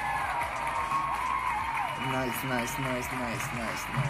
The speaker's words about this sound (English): Let's get a clap. Let's get a clap. Let's get a clap.